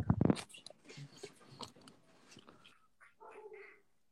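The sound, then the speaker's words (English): Crunchy biting and chewing noises are followed near the end by a small reptile's brief, squeaky chirps, over a faint background rustle. “Now that's him chirping.”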